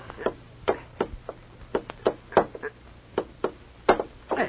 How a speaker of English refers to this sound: Hey, give me the hammer and tack. Gladly. Have it up in a jiffy.